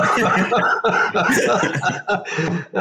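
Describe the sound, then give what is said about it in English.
A loud burst of coughing mixed with chuckling, several rough, breathy hacks in quick succession over a few seconds. “You made me cough.”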